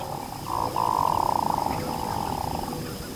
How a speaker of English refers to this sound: With a voice that sounds more like a frog than a bird, a male hooded merganser is courting a female.